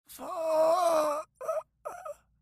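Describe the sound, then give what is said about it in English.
A dying man lets out a drawn-out, pained groan as his last gasp of life, followed by two shorter strained moans, fairly loud, with no other sounds around them. “Edward, with one last gasp of life, reaches up toward Clint.”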